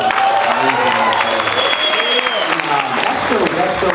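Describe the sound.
An audience applauds steadily, a dense wash of clapping that stays loud and even throughout, with a few faint voices and whoops mixed in underneath.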